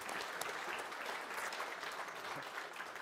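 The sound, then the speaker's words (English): An audience claps steadily for a speaker for about three seconds, a dense, even patter of many hands with no voices standing out and no fade. “Yeah, you can clap for him if you want.”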